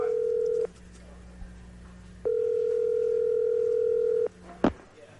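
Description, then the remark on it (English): A morning phone call to golfer Tiger Woods: a steady, mid-pitched electronic tone sounds briefly, pauses, then holds for about two seconds before a sharp click as the call is picked up. “We thought we'd give him a call this morning and see how he spent his PGA Championship weekend.”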